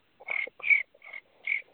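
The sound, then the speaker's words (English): A person imitates cricket chirping with their mouth, making four short, trilling chirps around a high narrow pitch in an uneven rhythm, fairly loud, with no talking. “So, yeah, a little bit of cricket sound. That's a legit cricket sound, man.”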